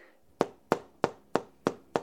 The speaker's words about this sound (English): Hear that? That's a glass picture frame from a pretty big print. This hangs right over our couch and we love it, but it's going to have to go.